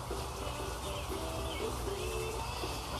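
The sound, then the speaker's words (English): Birds sing outdoors among blooming flowers, with soft cooing phrases and a few high chirps repeating over a steady background hiss; no one speaks. “Flowers blooming, birds singing.”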